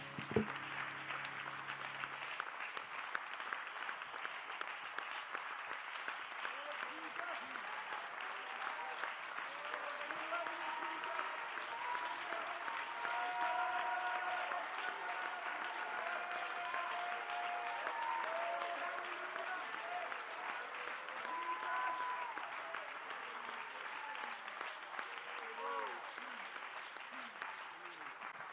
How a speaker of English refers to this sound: In Jesus' name, and someone shout, amen. Let's give the Lord one more good hand clap of praise before we're seated.